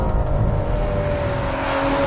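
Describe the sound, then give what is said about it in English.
A Ferrari 812 GTS's front-mounted V12 engine drones steadily, a sustained loud rumble with a bright harmonic whine, suggesting the car is pulling hard under acceleration. No one speaks. “That glorious V12 symphony just got even better”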